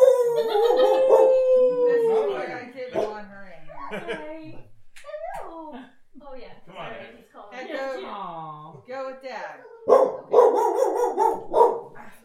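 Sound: dog barking and howling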